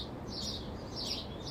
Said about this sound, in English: Damn, them birds are getting it done. Chill, y'all. Chill, chill, chill.